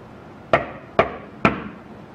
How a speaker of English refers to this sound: I'm gonna knock on the wall here. This is an opportunity for you to communicate with us by knocking back. It's a fun little game that we like to play. So I'm gonna knock three times and I wanna see if anybody can copy me. Here I go.